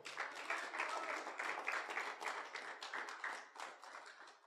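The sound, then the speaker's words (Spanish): An audience applauds steadily for several seconds, a dense wash of many hands clapping at an even loudness with no voices on top. “Un fuerte aplauso.”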